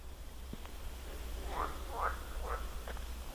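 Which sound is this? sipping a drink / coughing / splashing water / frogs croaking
frogs croaking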